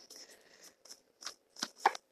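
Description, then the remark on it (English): Cards from the Tarot Mucha deck being shuffled: a run of soft, crisp papery riffles and slaps in uneven bursts, growing a little sharper toward the end, with no voices. “I'm on the Tarot Mucha deck now. We're shuffling.”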